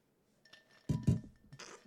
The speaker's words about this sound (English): Dude, we have some ice cubes in our glasses today. Yes. Very nice ASMR.